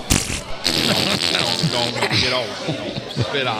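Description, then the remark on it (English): A voice blows a rapid string of wet, sputtering mouth-fart noises, buzzing and flapping in bursts with brief pauses, loud throughout and with no speech mixed in. “I can make some fart noises.”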